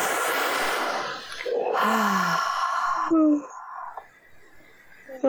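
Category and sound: human body sound, yawning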